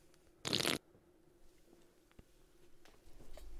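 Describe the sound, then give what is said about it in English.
A single short slurping sip of a fizzy ginger root beer from a can of Zevia, a brief burst lasting under half a second, followed by quiet room tone with a few faint clicks and rustles. “Take a nice sip.”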